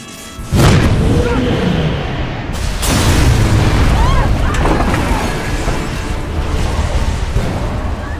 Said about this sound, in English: It bursts into flames, and it's falling, it's crashing! And the frame is crashing to the ground. not quite to the mooring mast, but oh, the humanity!